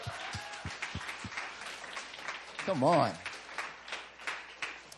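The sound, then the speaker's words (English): A crowd breaks into steady, dense applause, many hands clapping at once, with a voice calling out briefly and a rising whoop or cheer partway through. “Yo, let's give God a round of applause.”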